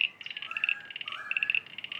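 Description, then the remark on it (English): A chorus of frogs calling at a pond: rapid, high-pitched pulsing trills repeat and overlap, while lower rising calls weave underneath. The sound is steady and fairly quiet, with no one talking. “Oh, there's lots of them calling now.”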